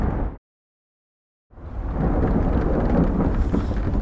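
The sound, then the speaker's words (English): A brief burst of storm noise cuts to dead silence, then heavy rain and deep rolling thunder swell back in, loud, a dense continuous roar with no voices. “Oh, God, this storm is really bad.”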